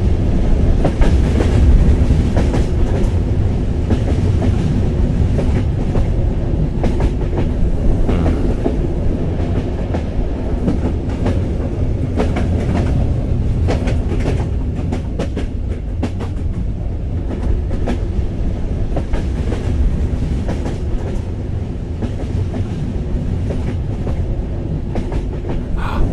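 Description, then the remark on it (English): A train carriage with no windows rolls steadily along the rails, a continuous rumble with faint rhythmic clickety-clack from the wheels and a low mechanical drone throughout, no voices. “Oh, now I'm on the train and there's no windows on this one car that I'm on, and the fresh air is just so delicious.”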